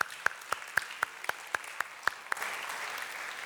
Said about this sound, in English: Give the Lord another round of applause.